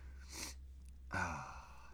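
A sick person blows their nose into a microphone: a short sniff-like burst, then a longer, louder wet honking blow that trails off, with no talking.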